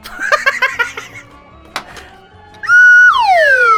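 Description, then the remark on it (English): Brief laughter, then a loud vocal imitation of a slide whistle: a held high note that slides steadily downward in pitch, alone. “I wish I had a slide whistle right now.”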